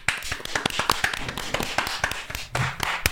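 A quick, uneven string of sharp hand claps, fairly loud, repeating many times with a faint noisy background and a brief louder burst near the end.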